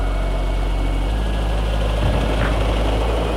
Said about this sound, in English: In moments, Dick Devon's helicopter reaches Futuria.